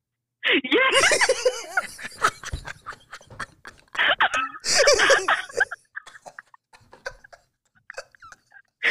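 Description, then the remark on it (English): Two loud sneezes burst out a few seconds apart, each trailing into breathy, laughing noises, with scattered quieter sounds afterward. “Did he tell you about our inside joke about which one? the sneezing.”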